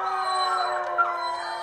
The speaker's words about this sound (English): Is that a dog kennel? It's a wolf pack. Oh, it's scarier if it's a dog kennel.